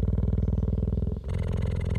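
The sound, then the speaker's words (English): A female cheetah purring, recorded with a microphone lowered to within about 3 yards of her: a deep rumbling buzz of rapid, even pulses that shifts in tone about halfway through as the breath turns, with no voices. “And when it got within about 3 yards of this cheetah, I could see her chest rising and falling, but I could also hear she was purring just the same as any cat.”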